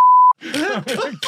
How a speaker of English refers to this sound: Sorry. That's actually a bit of a real reference. I'm just gonna beep that out.